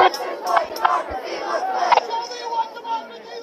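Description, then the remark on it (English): A large protest crowd of many voices shouting together in a dense, loud roar, chanting slogans such as "Our streets" and "This is what democracy looks like," with sharp bursts of louder yelling rising over the sustained collective din. The crowd has grown to about triple its starting size. “This crowd is like tripled from when we started.”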